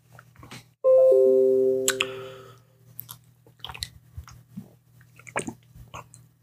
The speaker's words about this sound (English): Excuse me, I took me a sip of my coffee here.